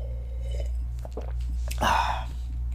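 A short slurping sip of evening wine lasting about a quarter second, preceded by a few soft clicks and small mouth sounds, over a steady low hum with no talking.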